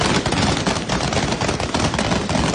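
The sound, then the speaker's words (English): Rapid, loud bursts of gunfire crackle over a dense wash of noise as Taliban fighters fire shots into the air to disperse a crowd of protesters, the sharp shots arriving in quick irregular volleys throughout. “Eventually, fighters fired shots in the air to disperse the crowd.”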